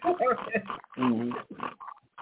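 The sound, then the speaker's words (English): A person imitates a pig, making a quick series of nasal oinks and grunting snorts in uneven bursts with short pauses between them. “you're nothing but a pig”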